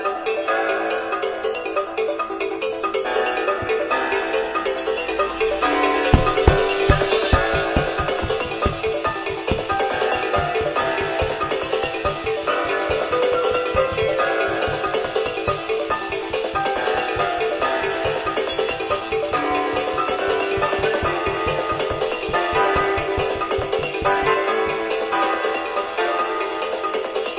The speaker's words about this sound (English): The music for this one is what I have as my ringtone. Next. It's loading. To the point where I just jumped and tried to answer my phone when I heard it. This could be an okay ringtone.